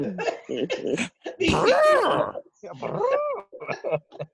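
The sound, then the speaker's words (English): A person makes throaty, rising-and-falling mouth calls imitating an animal, two drawn-out cries in a row, fairly loud, with short bursts of voice and laughter around them. “let me hear your mouth call.”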